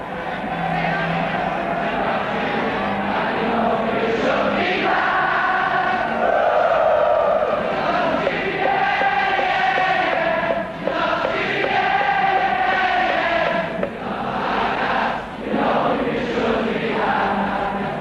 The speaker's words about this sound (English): The music the crowd sings is the music that Liverpool has sent echoing around the world.